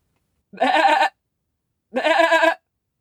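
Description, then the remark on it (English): A sheep bleats twice, each call a wavering, nasal cry lasting about half a second, separated by a short pause. Both bleats are loud, with silence around them. “She pointed at the sheep. And what did they sing?”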